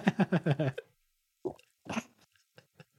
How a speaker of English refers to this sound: I'm going to take a sip of water real quick.